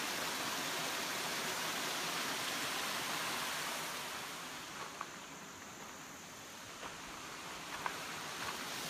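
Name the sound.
river water flowing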